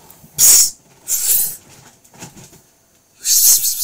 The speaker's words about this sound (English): Get out! Cheeky cat going underneath my blanket that I've got covering stuff.